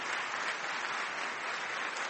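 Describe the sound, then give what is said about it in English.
An audience at a live Intelligence Squared U.S. debate at Venue 610 at the Sperta Center in Chicago applauds steadily for Robert Rosenkrantz, a dense, even wash of many hands clapping at once with no distinct individual claps, holding a constant moderate loudness throughout and no voices. “And may I just invite one more round of applause for Robert Rosenkrantz for making this possible.”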